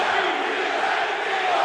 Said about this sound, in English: And they did a big Eagle cheer now.